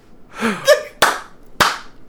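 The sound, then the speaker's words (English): Two sharp, loud claps about half a second apart, preceded by a short voiced cry or gasp, from a wrestling audience clapping in unison during a Mick Foley match. “No, this is people are clapping in the audience.”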